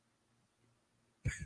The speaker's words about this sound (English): Ooh, I had a little burp there.